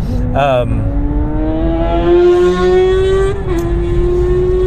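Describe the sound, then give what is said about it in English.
A motorcycle roars past the speaker, its engine whine climbing steadily in pitch over several seconds before dipping slightly as it moves away, loud and continuous over road rumble. “Motorcycle just passed me, if you couldn't hear that.”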